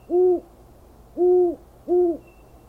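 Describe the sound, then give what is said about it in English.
An owl hoots three times at night in a steady, evenly spaced rhythm, each call a soft, low, rounded note over a quiet background hiss. “But at night, when the owls and coyotes and ghosts and robbers and Sasquatches lurked out there in the darkness for me, that was a little different.”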